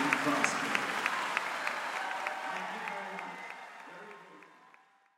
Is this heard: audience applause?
yes